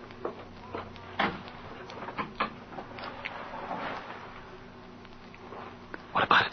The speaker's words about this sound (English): Go ahead, open the door. Quiet now, get set. All set. I don't think he'll hear us. This door is just made of canvas.